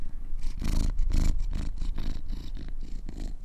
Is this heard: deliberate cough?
no